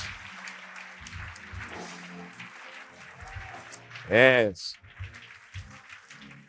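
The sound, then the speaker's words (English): An audience claps their hands in praise to the Lord, a dense, steady patter of many hands, broken by a single loud shouted word from a voice partway through. “Come on, put your hands together and give the Lord a hand clap and praise today.”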